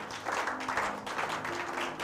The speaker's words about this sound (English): Okay. Clap for yourself, everybody.